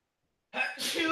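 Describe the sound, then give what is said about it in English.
A single sudden sneeze bursts out after half a second of silence, loud, with a bright, breathy explosive burst that trails off quickly. “okay, bless me, thank me.”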